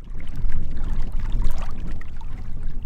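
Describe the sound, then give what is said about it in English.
Small wind-blown waves and ripples lap and slosh steadily against the shore of a small reservoir outside the water treatment plant in Superior, in the foothills on a cool, windy day, with a continuous low rumble of wind buffeting underneath; no voices. “Ripples and waves are blowing across the little reservoir outside of Superior's water treatment plant.”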